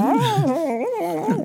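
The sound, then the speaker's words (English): A voice imitates a creature's roar, voicing the character Sagwa as he turns and roars: a sustained, wavering, howl-like cry whose pitch rises and falls for about a second and a half. It is fairly loud, with no talking. “He turns and he roars.”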